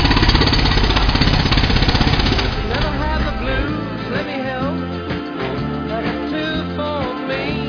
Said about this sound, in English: Gimme, we're in the power segment with a jackhammer. I got to pound this stuff home.